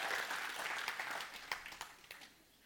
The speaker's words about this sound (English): All right, give them a clap. Come on, you guys, stand up.